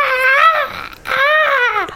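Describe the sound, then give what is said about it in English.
A person imitates how a cat with a loose, falling-out tooth yowled in pain when it was touched: two loud, drawn-out wailing cries, each rising then falling in pitch, with a brief pause between them and no other talk. “Well, I noticed that it was sort of hanging out, and when you touched it, the cat went...”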